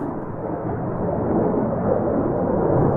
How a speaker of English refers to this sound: If you spend any time in central Tucson, you're familiar with the sound of the A-10 attack plane from Davis-Monthan. The A-10s are not too bad because they're the quietest fighter jets that the Air Force has.